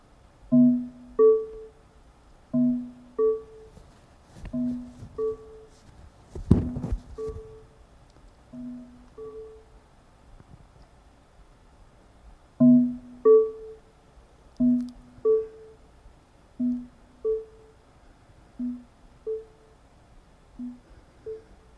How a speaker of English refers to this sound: We will listen to five pairs of percussive tones that increase in distance, followed by five tones that decrease in loudness.